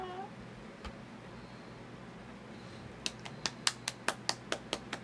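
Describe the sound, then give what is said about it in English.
An insincere round of fake applause: about ten crisp, evenly spaced claps or snaps in the last two seconds, after a quiet stretch with a brief meow-like sound at the start. “Thank you for that insincere round of fake applause.”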